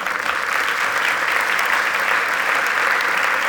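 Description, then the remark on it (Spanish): An audience bursts into loud, steady applause given to God, a dense wash of many hands clapping that holds at an even level throughout, with no voices standing out. “Den un aplauso a Dios.”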